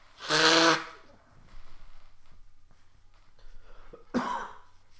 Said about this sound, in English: Let me blow my nose one time.